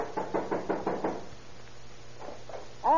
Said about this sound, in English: Better try knocking, Stone. Try it again, louder.